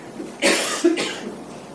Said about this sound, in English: Maybe someone coughs, and that sound captures your attention.